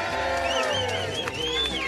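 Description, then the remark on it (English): A crowd of fans in the outfield at Spectrum Field, before a Phillies game against the Toronto Blue Jays, cheers and whoops in a steady, dense roar, with high voices sliding up and down above the din for about two seconds. “We got a nice crowd. You guys make some noise for us?”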